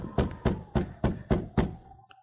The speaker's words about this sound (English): Now his goal was in sight, a small cabin standing on the banks of a frozen creek. A few moments later, he was pounding on the door.